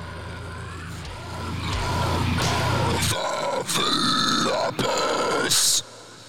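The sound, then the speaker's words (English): A metal vocalist layers about eight different screams at once into a demonic sound: loud guttural growls stacked into a harsh, distorted roar. A heavy low rumble drops out halfway, leaving rasping higher shrieks that end abruptly after about six seconds. “Like, the dude does like 8 different screams at once to make it sound like some kind of demon.”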